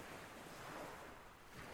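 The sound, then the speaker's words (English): Soft surf of cold sea water washes steadily onto a sandy shore, folding gently into frothy white foam, a continuous gentle hiss of breaking water with a light swell, quiet, with no voices. “Your feet are met with the same cold, refreshing water. The water folds gently, making a frothy white foam.”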